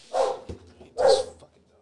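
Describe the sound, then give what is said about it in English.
A dog barks twice, two loud woofs about a second apart, with a brief pause between them. “If we're just, see? The dog gets it.”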